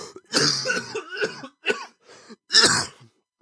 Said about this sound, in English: Okay, I realized somehow, even though I had it muted, it was still showing a cough.